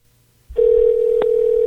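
A telephone line opens with a steady, unbroken low tone that holds to the end, interrupted by a single brief click midway as the number is dialed. No voices.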